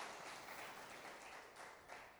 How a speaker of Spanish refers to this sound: Un aplauso al Señor si tú lo crees, que Dios no nos deja medias.